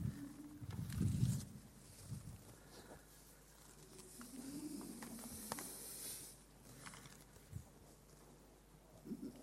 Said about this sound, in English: Hissing. It's a rattlesnake.